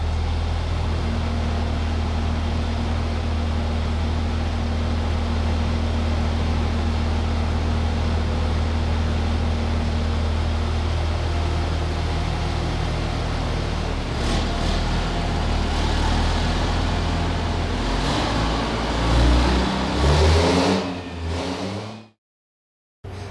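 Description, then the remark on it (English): A loud Cummins diesel truck with a G56 manual transmission drones steadily on a dyno during a test, then revs up through climbing pitch sweeps near the end before cutting off abruptly. No one speaks. “This test really has been extremely tough on the mechanical injection trucks, but I'm going to shut up and I'm going to actually try to get some sound bites here of this this manual transmission truck going through this test.”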